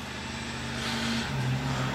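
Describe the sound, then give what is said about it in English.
Fire trucks cruise past, engines roaring steadily, a deep droning rumble that swells slightly louder midway, with no voices and no siren. “Man, we got a roaring sounds, of course. Fire trucks cruising.”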